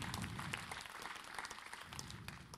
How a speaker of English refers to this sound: You can give him a clap. Give God a clap.